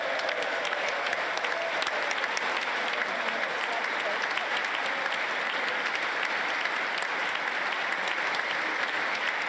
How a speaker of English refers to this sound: And what we're watching here, if you're watching today rather than listening, is Zelensky entering to much applause and a standing ovation and the greetings of so many different people.